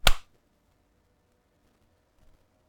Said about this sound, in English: Let's do it again, but only once. Only once. 40. Good. Only once. We're gonna clap.